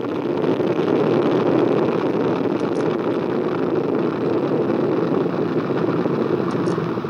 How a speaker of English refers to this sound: All 4 RS-25 engines on the core stage and 2 solid rocket boosters now propelling the vehicle at 128 miles per hour.